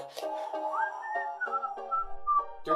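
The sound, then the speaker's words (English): A person whistles a short wavering run of notes that slides up and steps between pitches for a few seconds, with no talking over it. “I can't whistle.”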